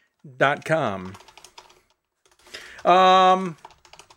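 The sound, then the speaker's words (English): Quiet, rapid clicking of typing on a computer keyboard as social media posts are typed out, with clusters of keystrokes filling the gaps between two loud, sustained tonal vocal sounds. “I'm speaking of social media, typing that out now, getting those things sent out.”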